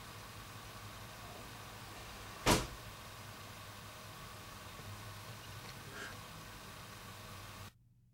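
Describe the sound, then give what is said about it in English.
At about 4 a.m., a door swings shut with a single sharp thud, followed a few seconds later by a much fainter knock as it bounces back open, all over a steady low room hum with no voices. “The door shuts and then it like bounces back open.”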